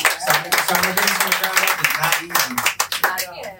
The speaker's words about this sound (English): Get ready and clap.